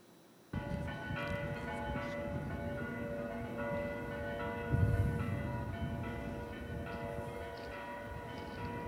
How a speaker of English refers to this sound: You hear the church bells? You hear it?